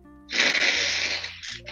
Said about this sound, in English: He's gonna blow his nose. Hey guys, watch this.